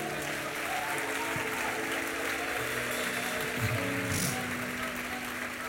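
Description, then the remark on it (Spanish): An audience applauds steadily for several seconds, giving its best applause to the Lord, a dense, continuous wash of clapping from many hands, with faint sustained musical tones underneath. “Dele el mejor aplauso al Señor.”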